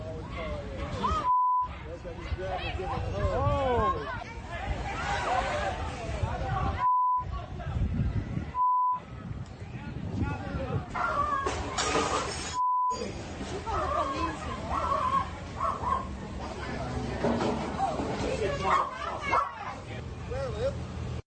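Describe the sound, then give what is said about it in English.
A crowd lets out sudden shocked gasps and exclamations over a steady babble of agitated voices, broken up by several short, high electronic bleeps with brief silent gaps, reacting as an attacker grabs a woman sitting on the grass by her long hair and yanks her. “The gasp that you heard the crowd yell out or do was when the woman is sitting on the grass, minding her business, talking to her girlfriend.”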